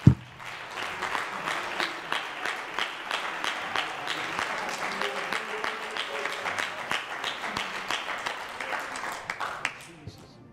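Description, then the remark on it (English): A crowd applauds steadily for about ten seconds, giving God a hand clap of praise: dense overlapping hand claps with a few sharper individual claps standing out, a faint murmur of voices beneath, then the clapping tapers off at the end. “Let's just give God a hand clap of praise real quick.”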